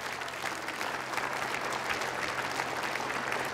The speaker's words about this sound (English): Now give the Lord a hand clap.